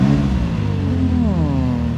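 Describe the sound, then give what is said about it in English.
A convertible car's engine, roof down, revs loudly, its throaty drone climbing in pitch partway through and then settling, with no voices over it. “With that said, let's get a quick sound check.”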